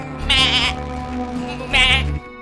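A goat bleats twice, fairly loud, each cry a quavering, wavering call lasting under half a second, separated by a short pause with a low steady hum underneath.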